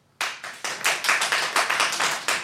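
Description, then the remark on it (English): An audience claps to vote for the side of a debate they find has the stronger argument, starting abruptly and continuing as a steady, fairly quick series of sharp bright claps, moderately loud, with no voices over it. “So if you think that friends did about it, have a stronger argument. Clap now.”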